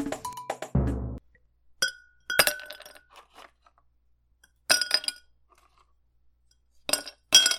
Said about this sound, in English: Pour yourself a drink, and let's jump into it.